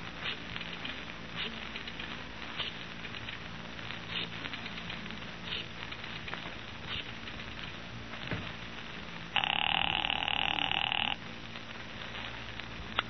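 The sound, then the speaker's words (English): A single telephone ring, about two seconds long, sounds clearly over a steady, rough background hiss, like the ringback heard on the line while a call connects. “I've got an important phone call to make.”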